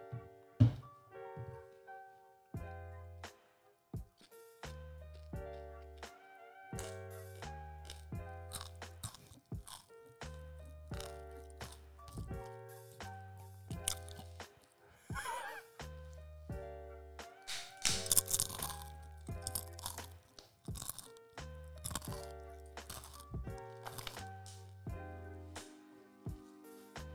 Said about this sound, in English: Hear me chew? Yeah. You do? Yeah. The ASMR is real. Well, not from that far. Okay. Okay, actually, never mind. You can. That was a crunchy boy.